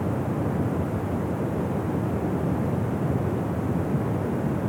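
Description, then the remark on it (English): A waterfall, where a river's water curves over and falls, roars loudly and without pause, a dense, steady rumble of rushing water with a deep low-end weight and a hissing wash on top, unchanging throughout, under a cloudy, cold sky. “Right away, you become aware of the constant, loud sound of the waterfall, almost carrying a resemblance to a majestic lion roaring at its full might.”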